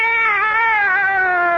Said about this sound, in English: Meow! Back in the bag, Minerva.